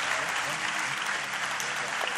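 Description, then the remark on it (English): An audience at a sermon applauds the 'bowl of stew' volunteers, a dense, even wash of many hands clapping steadily at a constant loudness with no voices standing out. “Give my bowl of stew people a round of applause.”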